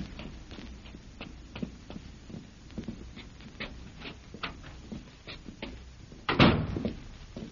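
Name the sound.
footsteps climbing stairs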